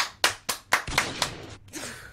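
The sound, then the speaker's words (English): A short applause sound effect played from a soundboard: five crisp, evenly spaced claps in a steady rhythm, then a softer, blurred wash of clapping trailing off. Moderately loud, with no talking over it. “It literally says applause.”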